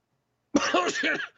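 A harsh, raspy cough bursts out after a moment of silence, a quick run of three or four rough, hacking spasms lasting under a second.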